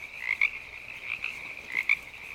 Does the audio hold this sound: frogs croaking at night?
yes